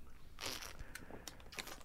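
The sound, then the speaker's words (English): A person swallowing a drink of water, with a few wet clicks and gulping mouth noises over about two seconds and no talking. “That's me swallowing.”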